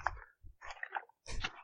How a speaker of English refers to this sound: For the audio listeners, yes, he's rustling a random bit of paper. Oh, what can I say? It's his generation. No, it's not a random bit of paper. It's an envelope. It says Australia 2018.